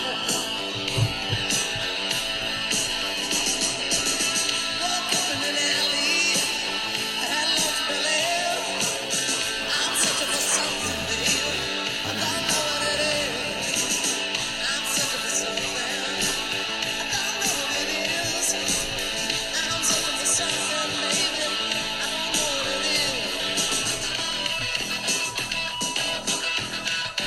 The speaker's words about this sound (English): This is so I could play you a lot of caterwauling and screaming.